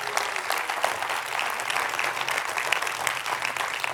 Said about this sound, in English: Come on, clap your hands to the Lord one time right there.